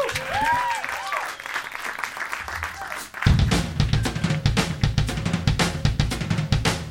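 A crowd claps and cheers to welcome a Louisville band, with a few rising whoops early on, then the applause swells abruptly into a louder, dense, steady roar of clapping that continues to the end.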